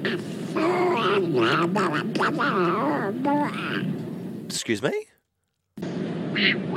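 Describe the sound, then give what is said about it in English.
A rapid string of loud, nasal duck quacks played as a sound effect introducing the show's Wood Duck of the Week Award segment, ending with a brief spoken question, then a moment of silence before talking resumes. “Right, that's the Wood Duck of the Week Award.”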